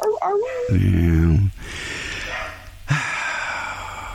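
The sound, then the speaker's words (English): Dogs bark and yowl in long, strained bursts, fairly loud, with a brief whimpering cry at the start and a short gap before the barking resumes. “We're waiting for the dogs to stop barking in the background here.”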